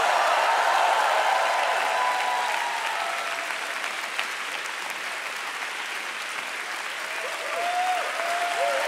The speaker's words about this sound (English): Oh yeah, I thought you'd be standing up. I thought you'd be standing up and clapping. I said, I thought you'd be standing and clapping and shouting and shouting.